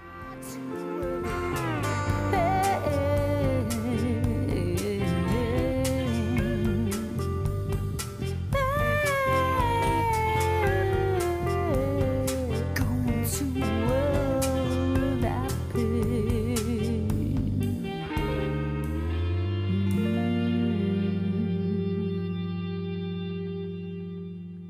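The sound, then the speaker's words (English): A full music track with an old chromatic harmonica, the kind Stevie Wonder plays, with all the notes on it, sounding sustained, reedy notes behind it, washed in reverb and echo; the harmonica tones hold and slowly fade as the piece ends. “So that lingering harmonica that you can hear in the background is an old harmonica that my uncle left for me.”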